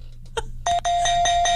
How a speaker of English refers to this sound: Kind of sounds like a doorbell. It sounds like we're doing a sitcom.